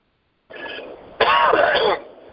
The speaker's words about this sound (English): The body itself, as I cough to get rid of certain things that don't belong in the respiratory tract, thank God, and I'll blink in order to get rid of any kind of irritant.